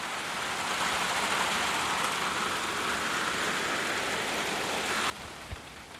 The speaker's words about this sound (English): These guys aren't happy, huh, with the rain, indoor rain.